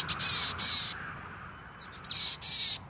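Boreal chickadee calls: two bursts of raspy, buzzy notes, each opening with a few short high chips, separated by a brief quiet gap. Clear, with no talking.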